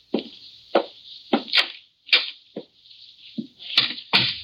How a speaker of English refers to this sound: I stepped across the hall, rang the buzzer. There was no answer. I rang again several times. I knocked, and I waited.